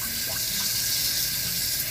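Cold water pours steadily from a faucet as it is turned up one setting at a time, growing louder; a dense, continuous hiss and splash that stays strong and even throughout, with no voices.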